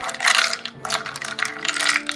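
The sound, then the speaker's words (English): Real dice rolled for a fortitude save in a tabletop role-playing game clatter and tumble across a hard tabletop in quick, bright rattling bursts, fairly loud, with a brief pause before a second run of clicks settles. No one speaks. “I'm going to roll with my real dice because I don't trust this fucking biased piece of shit.”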